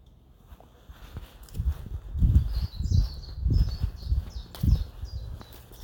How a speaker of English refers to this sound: Now, what's that bird? You should know that bird song. Is it a blackbird? No.